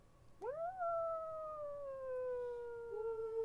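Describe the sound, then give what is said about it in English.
An ambulance siren wails: one long tone that sweeps up quickly, then holds and slowly sinks in pitch, steady and fairly loud over a faint low rumble, with no talking. “There's a siren right now.”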